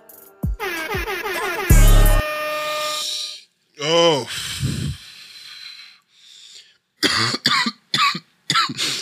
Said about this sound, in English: Yeah, I'm gonna have to cough a lot with this little under the weather I got going on. I got some sinus shit going on. I'm at the coughing stage of it. It sucks because when you cough, your chest hurt or your head hurt.